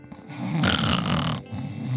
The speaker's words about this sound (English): She was snoring. She was sleeping. I didn't want to disturb her sleep.